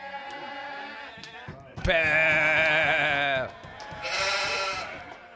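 A goat lets out a loud, wavering bleat up close, followed shortly by a second, higher-pitched bleat, with a faint murmur of background sound before them.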